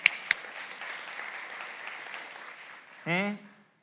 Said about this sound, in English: You can clap for that.